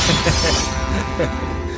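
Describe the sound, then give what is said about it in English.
A glass table shatters in a loud crash that bursts out and rings briefly, with the bright debris fading over about a second while a voice is audible underneath. “I'm going to combat homelessness by throwing it through a glass table.”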